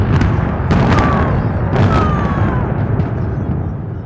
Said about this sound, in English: And the excited crowd started a countdown to the demolition. There was a short, dull blast, followed by a shockwave that hit deep in the chest.